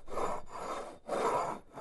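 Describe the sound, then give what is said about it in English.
A mug scraped back and forth across a desk as a simulation of a suspected mug sound, in about four rough, grinding strokes with brief pauses between them, a raspy, mid-pitched rubbing sound heard alone without any talking. “Yeah, let me just give you the simulation. Here's the mug on my desk.”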